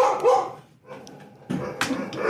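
A dog barks, a short yapping burst, then a brief lull before several more loud, sharp barks follow in quick succession.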